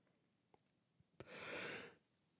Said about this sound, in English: Sorry, I don't mean to yawn. If I don't do it, I'm going to have to keep fighting it back for another 15 minutes.